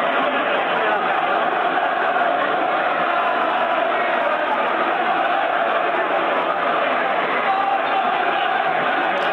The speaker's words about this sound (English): Wow. This is a huge crowd of people fighting back in Italy. and they're rating, and it's amazing. It's hundreds.